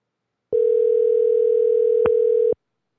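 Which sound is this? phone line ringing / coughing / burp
phone line ringing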